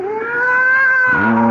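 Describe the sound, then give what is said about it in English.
A fat, sleek cat gives a loud, drawn-out mewing, a steady tonal cry that drops into a lower, rougher moan near the end, with no talking. “I'd forgotten that mewing, spewing cat.”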